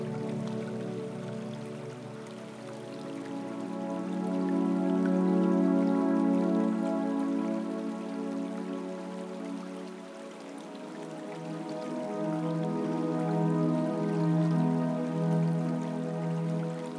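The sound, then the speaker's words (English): A gentle rain shower patters steadily, a soft continuous hiss of drops layered with a warm, sustained tonal hum, swelling slightly in the middle and near the end, with no voices. “The gentle shower is passing now.”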